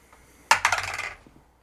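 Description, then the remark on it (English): Dice clatter onto a hard surface, a sharp first hit followed by a quick run of rattling bounces that fade out within about a second, the roll coming up 9. Fairly loud, with no talking. “our weekly listener roll, where we will roll and then you will shuffle that number of songs into your playlist.”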